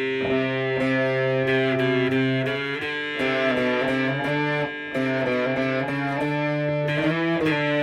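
A distorted electric guitar plays a C with sustained chords in a thick, buzzing tone, shifting between a few voicings with brief re-strums, loud with no voices.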